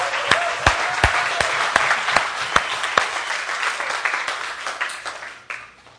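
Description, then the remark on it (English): A church audience breaks into loud, sustained applause for standing armed forces veterans on the day before Memorial Day, May 29, 2016, a dense wash of many hands clapping with a few sharper individual claps standing out, gradually tapering off toward the end. “How about a hand clap for these guys?”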